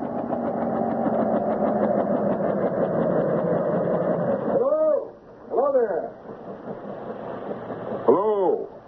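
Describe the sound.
A big helicopter comes in to land, its loud, steady engine drone holding for about five seconds, then dropping away. It is broken by a few short, swooping voiced sounds.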